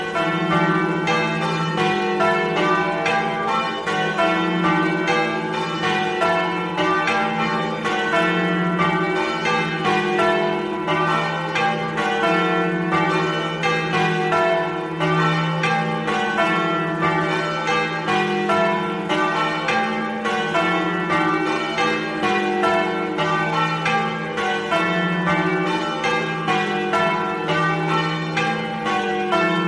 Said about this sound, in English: So what's unusual about the way the bells are being rung is that they are literally being thrown around by hand. This is well worth looking at on the YouTube video. They're at St Mary's Church in East Berkhold.